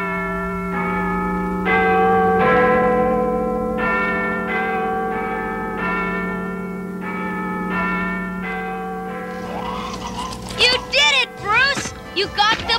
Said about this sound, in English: And as the clapper begins its swing, we hear the resounding bell clangs from Big Ben ringing out.